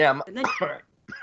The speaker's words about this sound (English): No, I think he's hacking away.